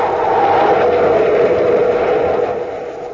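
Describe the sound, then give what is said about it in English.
A spaceship coming in to land on top of a bluff: a loud, steady engine roar with a broad rushing hum that holds for about three seconds, then eases off slightly at the end. No one speaks. “It's a ship. Coming in for a landing on top of the bluff.”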